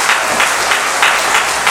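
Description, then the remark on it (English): A crowd applauds steadily for the interviewees, dense overlapping claps forming a continuous wash of sound with slight swells, fairly loud, with no voices over it. “Another round of applause for our interviewees.”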